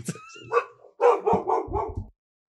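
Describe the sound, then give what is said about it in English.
A dog barks several times in a quick, loud burst, preceded by a short whine or yip, with no talking over it. “Puppers, there's puppers in the tower.”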